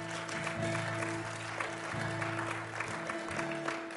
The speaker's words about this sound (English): And feel free to applaud all you want, for God deserves it all.